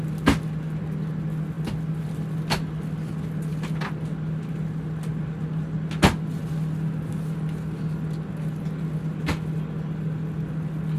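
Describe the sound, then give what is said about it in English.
Airplane overhead bins slam shut one after another, a handful of sharp, irregular thuds with one especially loud clunk, over a steady low cabin hum. No one speaks. “I already knew because I say it literally all the time that like my favorite sound in the entire world is in an airplane, the overhead compartments closing.”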